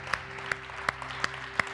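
An audience claps in a slow, steady rhythm for people who came to the front to be prayed for, about five crisp claps evenly spaced, fairly quiet against a low background hum, with no talking.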